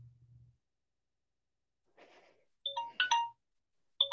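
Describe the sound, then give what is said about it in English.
A phone timer set for one minute goes off: a loud, bright electronic chime plays a quick run of melodic tones, pauses briefly, then starts repeating. A soft low hum and a faint rustle come before it. “No, the joke is that I set a timer for a minute when you said, can you talk for a minute?”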